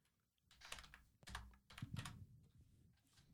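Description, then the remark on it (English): Rapid clacking of keys on a computer keyboard in irregular bursts of quick taps with short pauses between them, no voices. “Obligatory typing noises.”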